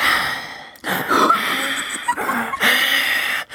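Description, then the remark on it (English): A voice imitates heavy, raspy breathing heard outside a door at night, a few long noisy inhales and exhales with short pauses between them, loud and breathy with no words. “and was terrified and then thought I heard breathing. Oh, my God.”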